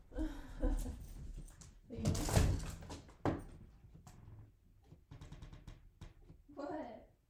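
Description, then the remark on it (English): A door is handled and swung open to let someone go outside, then left slightly open, with a few sharp latch clicks and a brief rushing swish, amid shuffling and a muffled voice now and then. “Let me just leave the door slightly open.”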